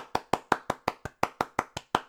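A single person claps a steady round of applause for an acting masterclass, about a dozen sharp, even hand claps in a quick regular rhythm, with no voices.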